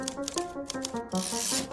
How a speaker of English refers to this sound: And in the prosecution's closing statement, they said that Ethel, quote, sat at that typewriter and struck the keys blow by blow against her own country in the interests of the Soviet